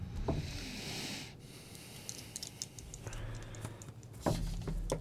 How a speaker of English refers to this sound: Oh, come on. Dice flying around the table. I got a natural one.